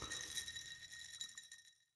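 Glasses clink together in a toast, one bright chime whose high ringing tone lingers and fades out over about two seconds. It sounds fairly quiet, with no talking.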